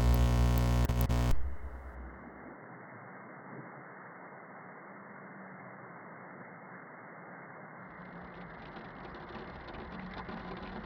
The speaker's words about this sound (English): It's raining. Yes, this terraform didn't succeed. The weather patterns are unpredictable and dangerous.